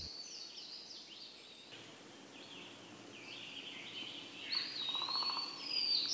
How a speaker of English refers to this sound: And speaking of making noise, red-bellied woodpeckers will drum on dead trees and make this echoing sound throughout the forest.